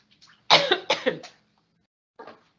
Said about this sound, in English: Sorry about the cough.